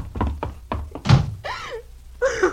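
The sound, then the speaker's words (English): A few quick wooden thumps lead into a heavy door banging shut, followed by squeaky, grating metallic scrapes as a lock is worked. “unlock this door.”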